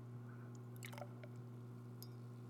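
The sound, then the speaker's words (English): Beer being poured roughly into a glass, raising foam, with short wet splashing and fizzing bursts over a steady low electrical hum; no one speaks. “I poured that a little shitty so you can hear it, and it sounded really good.”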